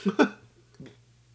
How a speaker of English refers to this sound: I need to burp. See?